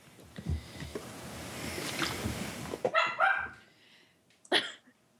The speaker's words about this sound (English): Dog! Bingo! I can't, like, get up and hit him, because he's growling now. Okay, I'm sorry. Oh, my God. Okay. I think he's done.